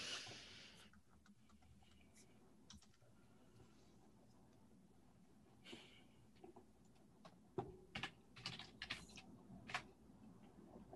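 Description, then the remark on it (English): Quiet keyboard typing: scattered, irregular key clicks at first, then a quicker burst of sharper taps toward the end, heard alone with no one talking. “Oh, I think people are typing secrets.”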